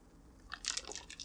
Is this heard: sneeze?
no